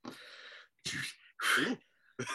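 A string of sneezes in quick succession, about four sharp, breathy bursts, each loud and abrupt with short pauses between them and no talking.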